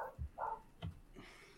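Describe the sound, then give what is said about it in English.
Dogs outside bark several times in quick, uneven succession, short sharp woofs, fairly quiet against a faint background hum. “Your dog, or is that Nick's dog that's barking right now?”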